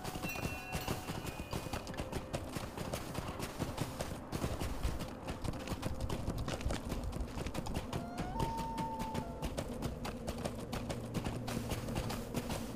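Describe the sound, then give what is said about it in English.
Rapid, steady hoofbeats of a goat mount in a video game, following another player, clatter continuously, with a few faint tonal chimes in the background and no one talking. “Don't go too fast, because I need to tell my goat to follow you.”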